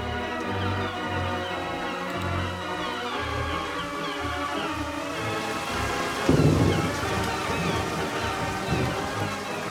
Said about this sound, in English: Though it may be summer, yet it is piddling down with rain.